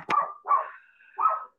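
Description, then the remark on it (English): Dogs bark in the background in three quick, yappy bursts, the middle one trailing off into a thin whine before the last bark. No one speaks. “And I apologize, y'all are hearing my dogs in the background now. I don't know what they're going crazy about.”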